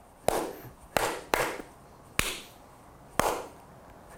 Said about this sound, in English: This guy's got no rhythm. And so it's really funny at any time that I feel like I try to sing and clap at the same time, it's more like this.